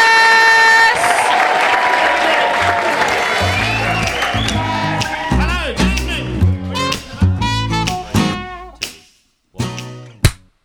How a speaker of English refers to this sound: They sounded better. They were in time with you, definitely. My time. Yeah. I mean, you know, it's just claps, isn't it?